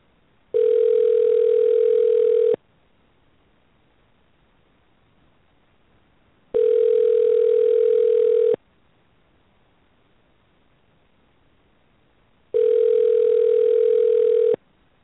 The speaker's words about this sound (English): It's ringing.